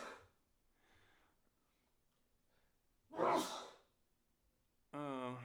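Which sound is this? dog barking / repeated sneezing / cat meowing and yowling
repeated sneezing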